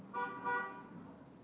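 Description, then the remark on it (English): Street traffic of cars and trucks on the Bowery below, drifting up into a room, with two short car horn honks in quick succession over a low, steady rumble of passing vehicles, fading out afterward. “There's the sound of cars, trucks, traffic from the Bowery below, drifting up into the room.”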